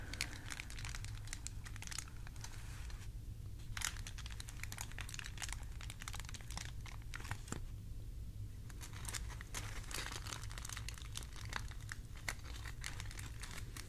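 Continuous crinkling of thin hair foil sheets during a haircut and highlighting, with crisp crackles and rustles in irregular bursts, a brief quieter lull in the middle, and no talking.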